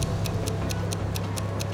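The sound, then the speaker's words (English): A bomb's timer ticks steadily and quickly, about eight crisp clicks in under two seconds, over a low constant hum with no voices. “But the timer was ticking, and he had to find the right place to hide the bag.”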